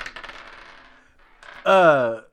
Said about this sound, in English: We're already hearing you rolling them dice.